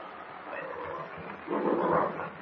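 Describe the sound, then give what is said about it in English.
A huge, angry bear in a dark cave growls: a low, rough growl rumbles continuously, swelling louder and harsher partway through before easing off, menacing with no speech. “The huge animal lumbers toward them, growling ferociously.”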